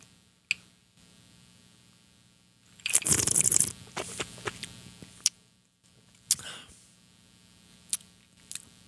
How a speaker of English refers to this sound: All right, so we're on the rocks here fully, and we'll take the first sip.